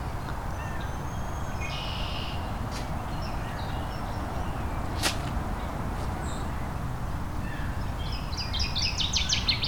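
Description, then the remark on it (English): A northern waterthrush sings a quick run of loud, sharp chirping notes near the end, after a few scattered earlier calls, all over a steady low rushing background. “There we go. Northern water thrush.”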